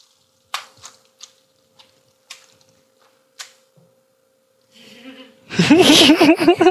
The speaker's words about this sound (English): And then the blood, and then the blood. Dead. Yeah, and then the blood dripping on like the counter.